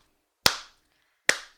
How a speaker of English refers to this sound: And he went around us clapping. Yeah. Clapping really like staccato and loud. Yeah.